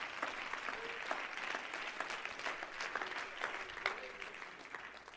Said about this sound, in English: Clap your hands to Jesus this morning.